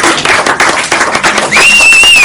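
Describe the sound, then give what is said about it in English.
A group claps together for a volunteer's courage in a brisk, dense patter of overlapping hand claps, fairly loud. Partway through, a thin, high whistling tone rises and holds over the applause. “Oh, no, let's clap for courage.”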